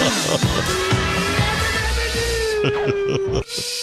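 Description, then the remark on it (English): A steam whistle blows one long, loud, steady note lasting about three seconds, with sharp clanks and bangs punctuating the background throughout. “Blow that whistle.”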